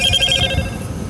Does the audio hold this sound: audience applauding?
no